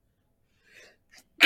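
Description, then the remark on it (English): A single loud sneeze bursts out at the end, preceded by a soft sharp intake of breath and a brief catch. Nobody speaks. “Bless you. Thank you.”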